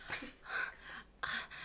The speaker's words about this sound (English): That's me breathing heavily.